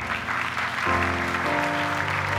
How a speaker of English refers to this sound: You can clap for that.